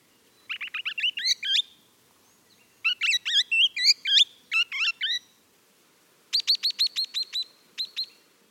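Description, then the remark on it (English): Swift parrot calls: several bursts of rapid, shrill, metallic chirps and piping notes, clear against a quiet background, with short pauses between the bursts and no talking. “The swift parrot is also critically endangered, and it also spends its summers in Tasmania to eat and breed”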